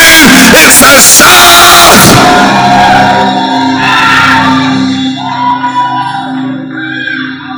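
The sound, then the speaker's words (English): A church audience shouts together to the Lord in triumph and victory, a loud, sustained burst of many voices with whoops and yells that peaks at the start and then tapers into a lower, ongoing roar. “It's a shout of triumph.”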